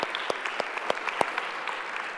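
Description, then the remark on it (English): A crowd applauds a team being thanked, with steady, dense clapping, sharper individual claps popping out above a continuous wash of hand noise at moderate volume, with no voices heard. “Can we clap for these guys?”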